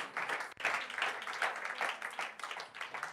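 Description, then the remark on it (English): A crowd claps hands unto the Lord in praise in a steady, continuous wash of applause, dense and even throughout with a brief dip near the start. “We pray that your spirit would overcome us, and would you clap your hands unto the Lord right now and give him some praise in this place.”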